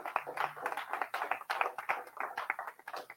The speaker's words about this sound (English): I'm excited about your future. Somebody clap about your future. Come on, right now.